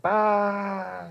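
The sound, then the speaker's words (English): A man's voice imitates a sheep's bleat with one drawn-out, nasal baa lasting about a second, loud, fading slightly at the end. “Bah. Ah, that's a sheep.”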